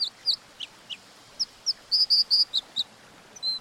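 A dipper sings a rapid series of high, sharp chirps and buzzy trills, bright notes arriving in quick irregular bursts with no voices over a soft hiss.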